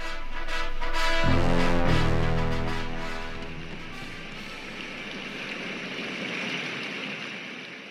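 A white noise machine, switched on before going to bed, runs with a steady rushing hiss like flowing water. A brief low droning tone sounds near the start, then fades into the continuous wash of noise.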